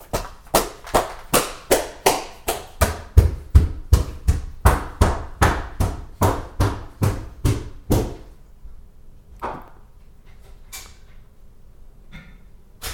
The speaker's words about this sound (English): Everyone knows that you can't do the stair stomps.